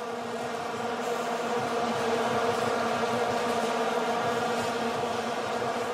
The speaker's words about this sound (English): There is an expectation of what football sounds like, and it certainly wasn't vuvuzelas, the plastic horns whose noise has been driving people mad. Just that continuous hum, which actually drowned out all of the meaningful noises.